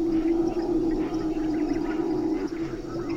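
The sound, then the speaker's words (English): Howler monkeys roar in a continuous, deep, droning chorus that rises and swells steadily like a windstorm, with no talking throughout. “The howler monkeys at first sounded like big wind storms.”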